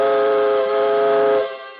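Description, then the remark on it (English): A steam train whistle sounds as a Christmas train sets off with steam pressure up on a journey across America, one long, loud, steady blast with a rich chord of harmonics, holding for well over a second before tapering off at the end. “Steam pressure is up, and we're off on the second leg of our swift journey across America on this peace-tide Christmas Eve.”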